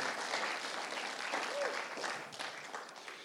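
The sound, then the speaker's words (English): An audience claps together to give thanks to the Lord in a sustained, dense burst of applause, steady and fairly loud throughout, with a murmur of voices mixed into the clapping. “Why don't we give the Lord a clap and say, thank you, Lord.”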